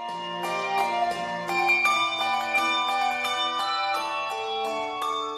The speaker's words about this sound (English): Which bell sounds better, the one with the tang or the one without? This is the Sonos Handbell Ensemble, one of the few choirs that mixes Schulmerich and Malmark bells.